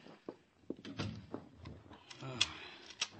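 Henry Fairchild's door on West 70th is pushed shut, then bolted and locked: a run of sharp wooden clunks and metallic clicks spread over a few seconds, with soft shuffling between them.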